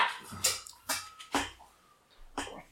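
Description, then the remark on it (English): A dog barks four times in short, sharp bursts at an uneven pace, moderately loud, with quiet room noise in between and no one talking. “What the dog doing?”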